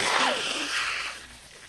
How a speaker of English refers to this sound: Can you stop? You got to stop blowing your nose on right into the mic. It's got to be awful.